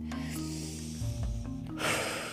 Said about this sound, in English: That feels good, doesn't it? That's her breathing in and breathing out.